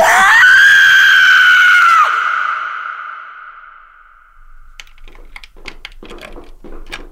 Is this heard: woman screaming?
yes